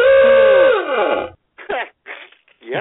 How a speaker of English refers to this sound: Well, you know, another good thing to do would be, you know, to get out a noisemaker. And if you got a noisemaker, you want it to make funny noises like this.